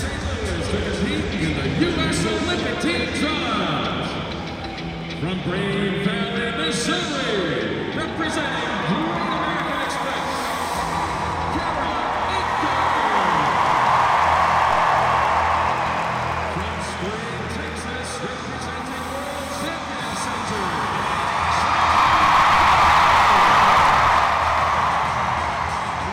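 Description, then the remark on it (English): A large indoor crowd at a gymnastics competition roars and cheers loudly while an amplified announcer's voice introduces gymnasts Kara Eaker and world champion Simone Biles, with the cheering swelling to deafening peaks twice. “Let's listen as the announcer introduces Missouri-based competitor Kara Eaker and one other gymnast you may have heard of, or shall we say, he tries to introduce that gymnast over the crowd's deafening cheers.”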